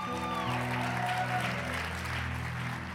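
Steady, dense audience applause for a member of the pastoral staff holds at an even level for the whole stretch, with sustained low keyboard chords droning underneath and a brief higher tone fading out early on.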